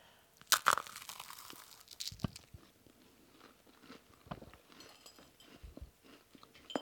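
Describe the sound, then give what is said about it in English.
A sharp, crunchy bite into a pistachio macaron, followed by several seconds of quieter, irregular chewing and crunching sounds, with no one talking. “It's very crunchy when you first bite in, and then chewy in the middle.”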